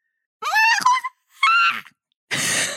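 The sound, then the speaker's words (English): A voice imitates a dragon screech in three quick bursts: two strained, raspy cries followed by a harsher, breathy hiss. The sound is fairly loud, with short pauses between bursts. “can you do a quick impression of your dragon screech to mark the delineate?”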